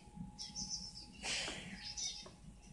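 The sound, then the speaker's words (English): A bird chirps in a few short, high bursts spread across a couple of seconds, fairly soft, with faint background noise underneath and no one talking. “I think we done spent too much fucking time on this goddamn bird. She's starting to talk.”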